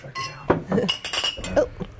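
Glasses clink together a few times in a quick toast to Brother Livonian, bright ringing taps, with faint voices murmuring in the background.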